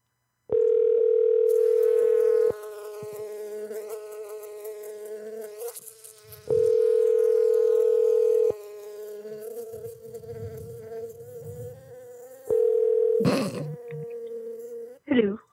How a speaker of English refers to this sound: I'm in the neighborhood, and I was just calling because we're having like a bee issue in the neighborhood.